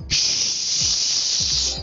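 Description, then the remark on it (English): A steady, loud white noise hiss, bright and airy, runs unbroken for about two seconds with no speech, just a few faint low rumbles underneath. “We're giving an unintentional plug to white noise now.”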